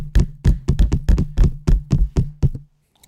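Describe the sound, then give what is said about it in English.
Hands slap against something in a fast, uneven string of about a dozen sharp hits over a couple of seconds, imitating a repeated banging noise, then stop. “Slapping them. Slap.”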